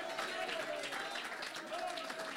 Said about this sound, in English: Oh, somebody give God a hand clap or praise. Hallelujah. Oh, come on, let's praise Him.